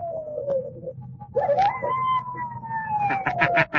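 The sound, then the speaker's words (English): A voice imitates hounds howling as if they are coming back across the moor: a long, wavering howl that slides down, then rises and sags slowly over a low rumble, with a few harsh bursts breaking in near the end. “I can sound as if they're coming back across the moor.”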